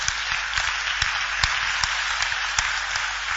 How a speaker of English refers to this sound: I want you to clap for the word of God.